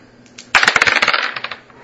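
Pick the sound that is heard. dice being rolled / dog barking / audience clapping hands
dice being rolled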